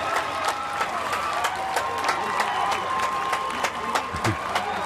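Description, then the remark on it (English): A large outdoor crowd at the Newport Folk Festival cheers and claps steadily for an encore, with sharp scattered claps and whistles over a dense, continuous roar of applause, loud and sustained throughout. “If it's up to the crowd, we are, right? The crowd very here much into.”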